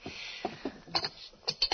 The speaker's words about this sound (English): This is my husband's breakfast. If you'll open the door. Sure thing. There you are. Thank you.